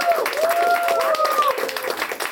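A crowd claps steadily and loudly for the whole stretch, a dense wash of applause with rising, wavering cheers and whoops riding on top, as an audience votes by applause for a contestant to win.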